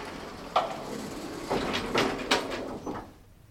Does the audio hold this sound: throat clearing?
no